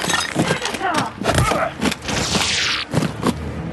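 Avi Singh's vase smashes loudly as GS-8 smashes one of the imp clones with it, a burst of sharp crashing impacts followed by shards scattering and tinkling over a few seconds, set against a busy, noisy background.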